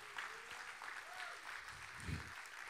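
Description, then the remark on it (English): A crowd of people claps steadily, a dense wash of applause with a few faint voices and cheers rising through it. “Come on, give them a big, big clap.”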